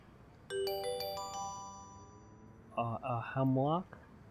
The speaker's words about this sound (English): Oh. And you hear the doorbell ring.